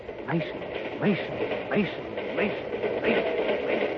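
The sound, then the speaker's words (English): Passenger train wheels rattle loudly over the rails in a steady, driving rhythm as the train travels toward the Big Bend country of Texas, with a hollow, voice-like drone pulsing in time with each beat. “Yes, the drumming of the wheels grinds that name into the old man's ears like a hollow chant as the train rattles on.”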